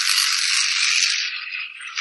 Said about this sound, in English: And I'm going to try to roll the dice, but the cat's now on my rolling thing.